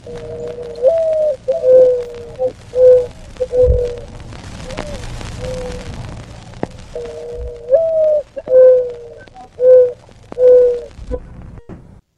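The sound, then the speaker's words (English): A mourning dove's soft, low cooing song repeats twice, each phrase a rising hoo followed by several mellow, steady coos, with a brief pause between the two series. “That is the morning dove.”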